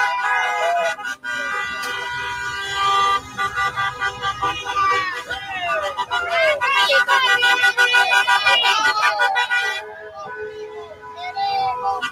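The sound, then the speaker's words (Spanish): A long line of cars in a demonstration caravan in Hialeah passes by with horns honking repeatedly and overlapping, loud, over a constant traffic rumble and crowd babble. “Ahí vemos, es inagotable la fila de autos.”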